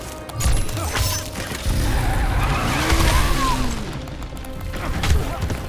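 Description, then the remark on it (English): Video game car skidding: tires squeal in rising and falling arcs over a steady, loud roar of engine and road noise that runs the whole time. “Oh, see that car? He'll actually control it.”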